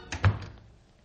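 A door shuts with a single solid thud, a light knock of the latch just before it, then all goes quiet.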